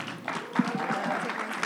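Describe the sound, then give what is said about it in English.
A church audience applauding together, a dense, steady wash of many hands clapping at a moderate level, with no clear rhythm and faint voices mixed underneath. “All right, church, let's clap it up.”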